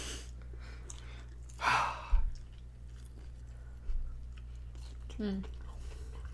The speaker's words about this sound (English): This is the ASMR munching part of the...